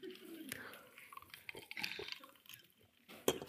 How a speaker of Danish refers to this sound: Og det er almindelig vand. og så er der vand med brus i, så nu tager jeg også lidt med det.